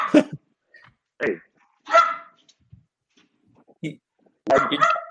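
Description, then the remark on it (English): Dogs bark in short, sharp bursts with uneven pauses between them, about five barks over a few seconds, fairly loud, with no voices in between. “Like those dogs.”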